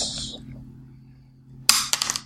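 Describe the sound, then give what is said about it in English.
A small four-sided die (D4) is tossed onto a hard table, landing with a sharp clack and then a few quick, rattling bounces against a quiet background hum. “Can I use your D4?”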